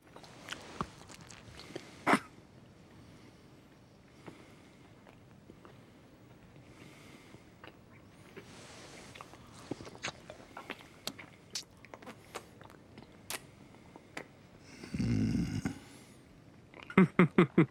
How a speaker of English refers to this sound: There is chewing in it, and there's chewing in another clip.